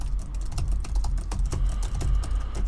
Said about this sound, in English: No. You're actually typing into something.